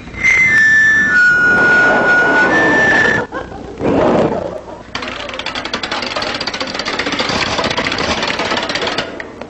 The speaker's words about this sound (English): Well, that was …, his very first television appearance playing the bicycle.